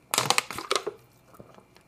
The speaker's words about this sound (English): I purposefully make that little crinkling sound for my little ASMR loves.